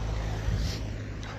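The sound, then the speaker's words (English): A car rumbles past on a road, a steady low engine and tyre roar with a swelling whoosh, mixed with some wind buffeting on the microphone. “Another car.”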